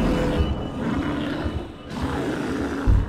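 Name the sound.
bear roaring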